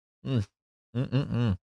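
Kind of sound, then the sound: human body sound, yawning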